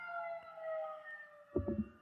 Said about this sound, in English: Fucking fire truck just flew by. Sorry about that. Ambulance.